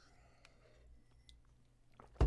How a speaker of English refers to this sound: Another sip.